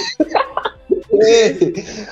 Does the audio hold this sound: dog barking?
no